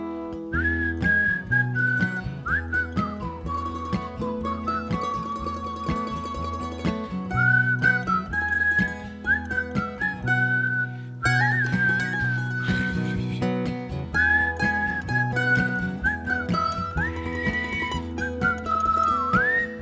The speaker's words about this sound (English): You can whistle along at home.